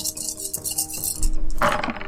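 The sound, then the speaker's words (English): A handful of eight dice rattles and clatters against a hard surface, with a louder tumbling burst near the end before settling. No one speaks. “Alright, so I'm at 8 dice, which is probably enough dice.”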